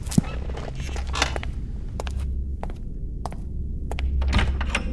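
Footsteps thud across a room at an unhurried pace to the front door, then a door latch clicks and the front door is pulled open, with a low steady hum underneath.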